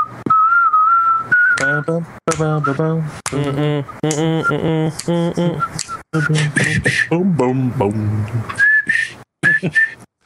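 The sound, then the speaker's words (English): A person whistles a short, wavering tune, with thin high notes at the start and end, while other voices hum or sing along in between. “I can't whistle worth shit.”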